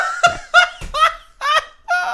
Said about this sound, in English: Two ducks.